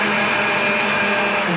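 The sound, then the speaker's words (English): A very heavy KitchenAid countertop blender runs loudly and steadily, its motor giving a constant whirring drone with a high whine on top, no voices over it. “This blender you're using is literally, I think, the heaviest blender that's ever existed. Yeah, it's a KitchenAid.”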